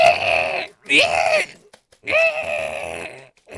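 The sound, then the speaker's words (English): A person vocally imitates a harsh, bat-like screech in three strained, rasping bursts separated by brief pauses, loud. “What's it sound like? Like I told you, like nails on a chalkboard. Like what? It's a screech.”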